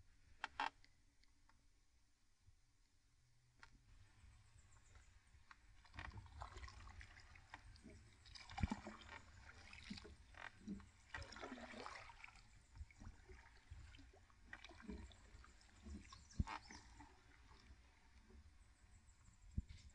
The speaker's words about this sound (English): And then I'm gonna row for a minute.